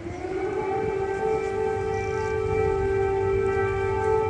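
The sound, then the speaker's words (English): Air raid sirens wail across Kyiv, Ukraine, holding a sustained tone with stacked harmonics at a constant loud level for the whole stretch, with no voices present. “As air raid sirens sounded across Kyiv, neither leader seemed at all concerned.”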